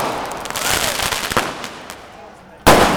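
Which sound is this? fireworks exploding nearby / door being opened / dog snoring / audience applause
fireworks exploding nearby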